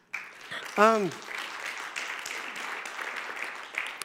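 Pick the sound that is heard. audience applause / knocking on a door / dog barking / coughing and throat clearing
audience applause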